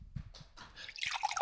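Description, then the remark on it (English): White wine trickles and splashes into a glass from the last of a bottle, a bright liquid pour that starts with a few drips and builds into a steady, rising gurgle for about a second. “Oh, that sounded like going to the loo. Well, it is white wine and I will be going to the loo very soon.”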